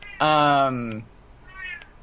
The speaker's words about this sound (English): I have a cat that clearly wants me to open the door, so I'm going to be right back. Sorry. I heard the cat. I did hear the cat.